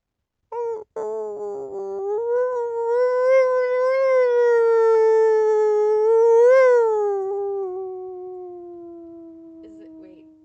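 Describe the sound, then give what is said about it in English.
A person imitates a wolf howl with a long, sustained voiced tone that rises, holds, swells briefly, then slowly falls and fades over about nine seconds, loud. “Is it a wolf? It is a wolf.”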